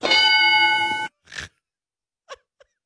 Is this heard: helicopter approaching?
no